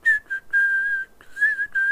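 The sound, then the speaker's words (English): A person whistles a short, looping melody, approximating a video game's music theme that loops through the game's first act. Clear steady notes are grouped into phrases separated by brief breaths, and no one speaks. “I can't actually make those high octave now sounds, but that's my best approximate with whistling.”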